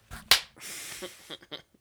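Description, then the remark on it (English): A flip phone is slammed shut to hang up on a call, with a single loud, sharp crack, followed by a brief rush of noise and a few faint clicks. “When you're really mad, you can just go... just hang up, on hang up slap just it on fucking them. Fucking slam it.”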